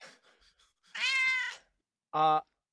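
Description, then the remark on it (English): A cat meows twice: first a long, drawn-out wavering meow, then after a short pause a brief, sharper one. Faint, soft sounds come just before. “I found the cat.”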